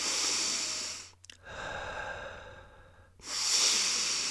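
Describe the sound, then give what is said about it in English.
Heavy breathing: a loud, rushing breath, a brief pause, then a long, softer drawn breath followed by another strong, noisy exhale. No talking. “Heavy breathing.”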